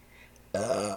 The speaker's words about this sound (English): Beer burps.